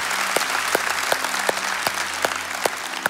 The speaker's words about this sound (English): One of the reasons why we have you celebrate and clap is so that people can know that we're excited about that. But two, so that we're publicly acknowledging, hey, man, we're all sinners too.